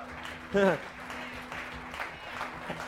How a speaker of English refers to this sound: And the clap gets slower, because it's like, oh, wait a second. That requires change.